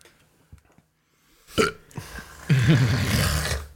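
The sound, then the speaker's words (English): A loud, drawn-out burp: a raspy, low growl with a wobbling pitch that lasts over a second. A few faint clicks and a short, sharp burst of noise come just before it. “That was a dragon yawn.”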